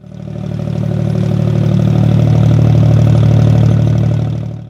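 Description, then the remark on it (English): A sub-bass water pumping station gives off a steady, deep low rumble, loud and unbroken with a faint mechanical clatter in it, holding constant for about five seconds before cutting off. “It was so quiet that I could feel this low rumble.”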